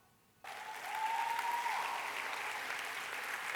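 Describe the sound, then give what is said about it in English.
An audience breaks into sudden, sustained applause, a dense wash of many hands clapping at once that swells quickly and holds steady at a loud level, with a faint whistle rising briefly within it. “From now on, if you want to clap, we'll just do one together.”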